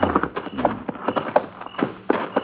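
Horses' hooves clip-clop on hard ground in an uneven, shuffling rhythm as the horses are led to be tied to a mesquite, a series of fairly loud knocks with no voices over them.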